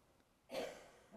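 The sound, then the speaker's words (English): A single soft cough from someone in a room, a short breathy burst that trails off into low background hush. “Everything we think of as the world outside, a car going by on the road, someone coughing in the room, the movements of nations and countries, continental plates, these are all simply aspects of nature.”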